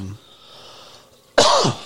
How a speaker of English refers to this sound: can you just stop coughing? I only coughed like twice.